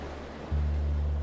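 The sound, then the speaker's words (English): A steady wash of ocean surf rushes on shore without pause, and halfway through a deep, droning hum swells in beneath it. No one speaks. “Maybe you can even hear the waves through your breath.”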